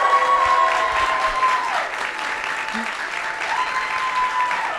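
An audience votes by round of applause for the Book of Mormon, clapping steadily in a dense, even wash with a few faint whistles or cheers threaded through, holding at a fairly loud level for the whole stretch.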